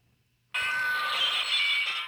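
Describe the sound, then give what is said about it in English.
A drinking glass gets pushed over by accident and shatters, a sudden loud crash bursting in after a moment of quiet, followed by bright, sustained tinkling of shards lasting well over a second. “Mamma mia, I pushed a glass inside instead of pulling it and drinking it.”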